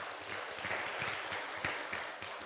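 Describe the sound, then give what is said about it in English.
An audience applauding for Jesus: a steady, dense wash of clapping from many hands, moderately loud and sustained throughout, with no voices standing out. “Let's hear it for Jesus, who's just given us some great news through the Bible.”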